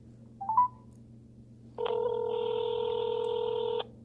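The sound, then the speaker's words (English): A phone call connecting: a quick electronic beep, then a single steady ringback tone lasting about two seconds, clear, over a faint low hum with no voices. “So you'll hear the phone ringing.”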